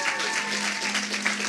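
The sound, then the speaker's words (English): A small family group at a church claps and cheers together, a dense steady patter of hands mixed with raised voices, holding at an even loudness throughout, with a low steady hum underneath. “A little cheering from the family.”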